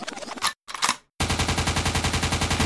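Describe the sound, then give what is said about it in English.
A couple of loud, sharp gunshot bursts ring out, then after a brief silence a rapid, steady stream of rapid-fire shots rattles on loudly, like sustained automatic fire. “the gunshot means forward.”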